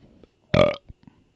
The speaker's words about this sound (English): Oh my god, so much soda. Just burp. I need to. It's not that easy.